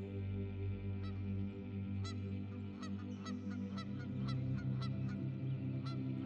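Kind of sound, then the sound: bird, wild geese honking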